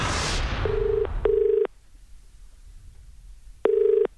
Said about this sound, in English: So then I rang him back straight away.